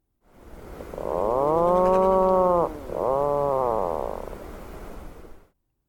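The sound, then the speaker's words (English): An Atlantic puffin gives a low, drawn-out moaning call in two long groaning phrases, each bending in pitch, fairly loud with no other sounds around it. “The most commonly heard call of puffins is given during the breeding season by both sexes and is described as a moaning call.”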